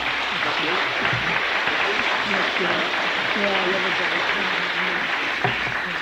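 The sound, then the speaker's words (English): Steady, dense applause at a Christian glory holiday gathering, for a man from Long Eaton near Nottingham. The clapping fills the whole stretch at an even level, with some voices faintly audible underneath. “Give him a clap.”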